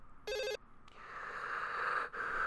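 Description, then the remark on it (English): A short electronic beep, then a telephone ringing through a phone line as a call is placed to WWE wrestler Sin Cara, a steady buzzing ring tone that briefly cuts out and resumes. No voices are heard. “Okay, it's ringing.”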